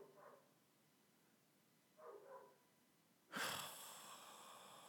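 dog barking in background

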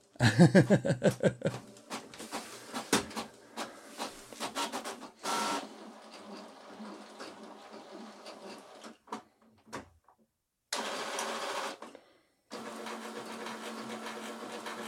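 printer printing

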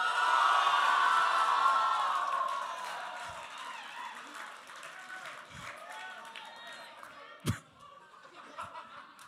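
audience cheering

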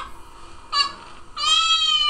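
cat meow sound effect

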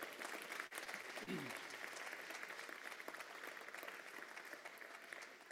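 audience round of applause

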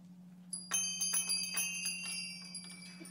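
bell ringing

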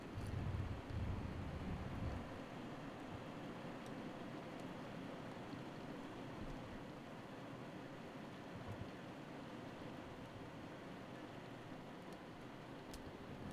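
heavy rain falling

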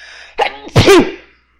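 sneeze

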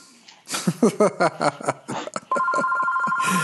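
telephone ringing

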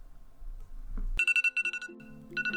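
timer going off

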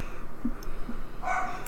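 dog barking

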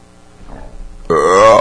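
burp

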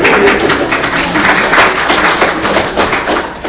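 audience clapping

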